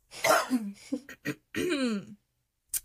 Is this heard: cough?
yes